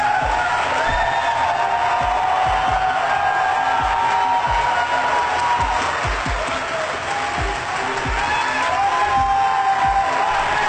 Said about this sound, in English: How much applause she gets for saying nothing.